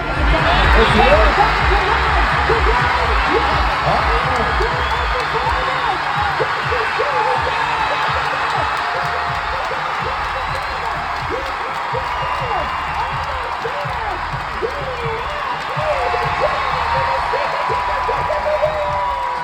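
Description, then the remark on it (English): A large crowd cheers loudly as Justin Medeiros and Ricky Garrard battle for second place at the finish of event 6, lunging for the line. It is a dense, sustained roar of shouting and whooping voices that stays strong for the whole stretch, with scattered applause underneath. “here in person it's usually the best races to the finish that really gets the crowd going.”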